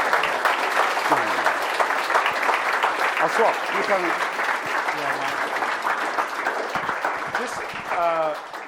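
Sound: audience clapping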